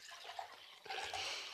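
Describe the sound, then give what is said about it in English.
Water pours steadily into a glass for a moment, a continuous splashing gurgle with a faint ringing tone, no voices alongside. “It does make a cool noise when you pour it in there.”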